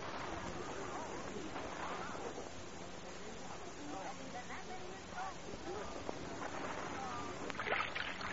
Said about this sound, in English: don't row the boat so fast. I can't keep up with you. I'm fighting against the undertug here.